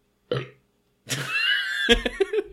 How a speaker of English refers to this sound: You're the one who's burping, I'm being totally mature.